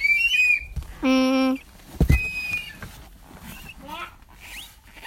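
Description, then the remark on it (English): A toy whistle gives one short, loud, steady blast lasting about half a second, with a reedy buzz to its tone. Soft voices and light handling noises surround it. “Whoa, you got a whistle.”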